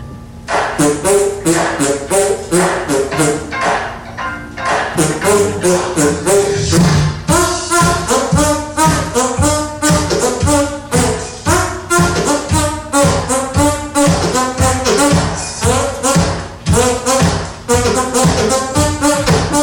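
A rapid, rhythmic stream of squelchy hand-fart noises bounces out a catchy, funky melody, the pitch jumping note to note in steady, loud bursts with no talking.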